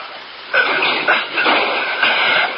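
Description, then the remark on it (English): A garage door off a house driveway rolls open with a steady, clattering metallic rumble that starts abruptly and swells in rhythmic surges roughly every half second. No one speaks. “Yeah, let's get the garage door.”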